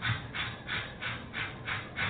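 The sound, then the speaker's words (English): A voice imitates natural childbirth labor breathing as taught in childbirth classes at Beth Israel Hospital: about seven quick, rhythmic breathy puffs in steady succession, soft and airy with no words spoken. “Now, when you go into labor, you must breathe like so.”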